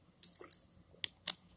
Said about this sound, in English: I take a swig of water there, trying to keep my throat wet.